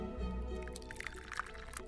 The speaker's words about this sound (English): Let's pour ourselves a cup.